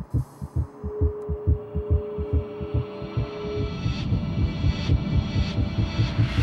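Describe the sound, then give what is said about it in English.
A deep, throbbing heartbeat from a film's opening sequence pulses steadily in paired thumps, growing denser and more insistent over a low droning hum and faint tonal wash, with no voices present. “The opening sequence to Hard Grit is iconic. The heartbeat, the distorted images, the guitar chords.”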